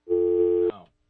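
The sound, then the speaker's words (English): A steady, buzzy telephone dial tone hums loudly for just over half a second, then a sharp click cuts it off and it fades quickly into silence. “Wait, is it ringing right there? Are you dialing out or calling in?”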